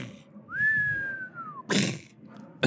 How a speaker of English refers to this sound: It's fireworks going off. Oh, beautiful.